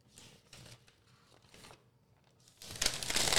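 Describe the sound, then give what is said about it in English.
Paper rustles and crinkles in a few short bursts, then swells into a louder, sustained crumpling at the end. No one speaks. “You need a paper?”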